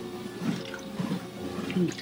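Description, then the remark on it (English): Three gurgling gulps of water, spaced about half a second apart, as someone walking a quiet country road on a pilgrimage drinks nearly the last of a bottle, with a steady hiss of background noise. “I finished my water. There's still a bit left.”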